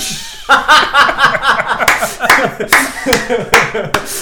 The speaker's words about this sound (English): One person claps.